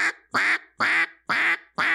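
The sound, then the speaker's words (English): A new single-reed Jargon Mega 4 duck call blows five loud, evenly spaced quacks in a steady rhythm, clear, with no talking. “Yeah, I want to get the new single reed Jargon call in my cart right now.”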